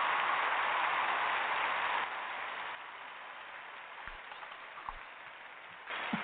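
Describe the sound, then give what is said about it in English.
Dense, steady clapping welcoming a guest host fills the whole clip like a hiss, dipping somewhat in loudness after a couple of seconds and swelling again near the end, with no voices. “All right, stop with the applause”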